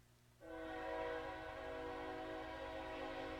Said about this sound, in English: I'll give the train a minute.